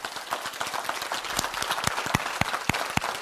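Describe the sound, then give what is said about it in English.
An audience claps their hands together, a dense patter of many claps with sharper individual slaps standing out in a loose, fairly steady rhythm, no voices heard. “God does not care about the color of one's skin. Clap your hands.”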